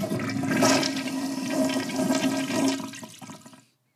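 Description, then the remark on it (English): A toilet flushes, a loud rushing swirl of water that holds steady for about three seconds before draining off and cutting to silence. No one speaks. “Yes, that is a toilet.”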